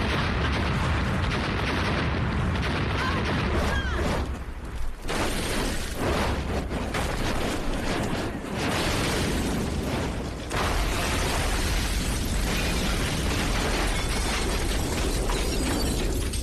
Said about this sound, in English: Then we started the big ones. Exploding. Like an official fireworks show right in front of her house.